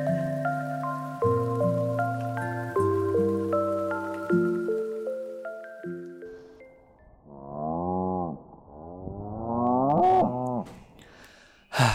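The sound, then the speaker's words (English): A stretch of steady, stepped synth chords gives way to two or three drawn-out cow moos, close and fairly loud, their pitch sliding and wavering before a short clatter at the end. “I've moved upstairs, and I'm pretty sure cows can't climb stairs, so I should be safe.”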